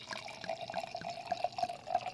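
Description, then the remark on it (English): Cerrasuolo d'Abruzzo wine, made from 100% Montepulciano, glugs from a bottle into a glass in a short, steady pour, with bubbling, gurgling liquid sounds and no talking. “Having said that, and I want to talk a little bit more, but you did bring a bottle of wine, so I'm going to actually pour a glass of wine.”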